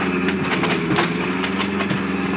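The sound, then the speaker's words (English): A car engine rumbles steadily and loudly as the car turns off the road into a field, a low droning hum with a gritty, rattling texture and faint rhythmic bumps throughout. No voices are heard. “Brace yourself. I'm going to turn off the road now.”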